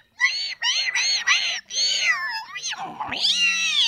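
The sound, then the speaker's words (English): A voice mimics whale song heard through a microphone put in the water, with a run of drawn-out, warbling, rising and falling wails, several in quick succession, fairly loud, ending in a long swooping cry. “And he put a microphone in the water and it was just like, You could hear all the whale activity. It was like you were at a fucking stadium of how hundreds of whales just like.”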